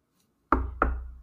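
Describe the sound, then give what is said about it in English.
Two firm knocks on a door in quick succession, solid with a short resonant decay after each. No voices accompany them. “We're knocking at the door.”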